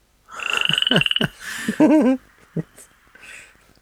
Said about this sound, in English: Your worst fear, frogs.